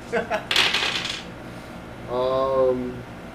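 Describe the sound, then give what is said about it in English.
A handful of dice rolled during a tabletop role-playing game clatters loudly across a hard surface for about a second in several quick rattling hits, followed after a pause by a short, drawn-out vocal sound. “You can't hold any more dice in this hand.”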